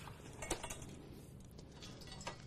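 Dry pasta is cracked in half over a pot of water that is starting to boil, so that it all fits. A few sharp, brittle cracks and clicks are scattered across a steady hiss of background noise, with no talking.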